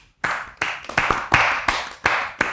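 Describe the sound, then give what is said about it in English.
A short round of applause for Austin Cindric, the newest winner in the Cup Series: loud, steady hand claps at an even rhythm over a dense wash of scattered clapping, with no talking. “Mr. Austin Cindric, round of applause.”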